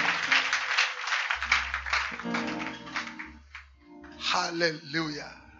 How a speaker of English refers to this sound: Clap your hands for the Lord and you may be seated.